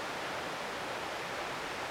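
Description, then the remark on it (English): A steady, unbroken roar of rushing water from a waterfall in Yosemite, a dense hiss-like wash of sound that holds an even level throughout, with no voices or other sounds. “It is sight, it is sound, and it is feeling to be in the presence of that waterfall.”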